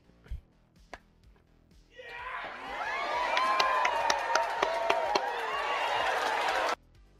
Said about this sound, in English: How about we just ask the audience to applause? All right, ready? On three, I want everybody to applause, okay? One, two, three.